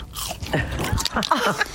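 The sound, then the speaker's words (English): Someone bites into a hot chip at Hawke's Farm Gate on the Mornington Peninsula, a loud crisp crunch followed by a few moist chewing crunches in quick, uneven succession, with no talking. “I'm about to crunch into one. Have a listen to this.”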